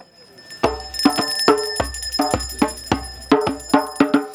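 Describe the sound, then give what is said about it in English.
Steady drumming, about ten evenly spaced loud beats with deep thumps and bright ringing, metallic overtones lingering between hits; no voices. “There's a moment of stillness before the drumming begins again.”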